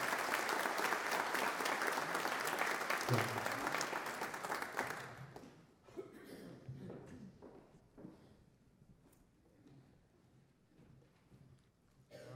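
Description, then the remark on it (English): A large audience at Broadway Baptist Church claps loudly and steadily for about five seconds to congratulate a group of women on their hard work, then the applause fades out into scattered claps and quiet background noise with faint movement. “Would you give them a round of applause and congratulations?”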